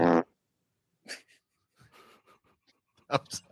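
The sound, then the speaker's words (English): A short, buzzy fart sound effect from a fart machine blurts out at the start, followed after a pause by several rougher, sputtering fart-like bursts, fairly loud, with no talking; the wrong button was hit three times. “You can't adjust the sound for the ringing in your headphones, but yet you're willing to play with a fart machine.”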